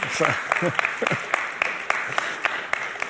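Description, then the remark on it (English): Scattered audience applause for a video that was just shown, a steady patter of claps from a modest crowd, with a few voices murmuring underneath at the start. “You're allowed to clap the video as well, but yeah.”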